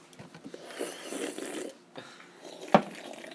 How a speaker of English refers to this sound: Do you think it's annoying how I slurp my drink? Hold on. I'll get it close to the podcast.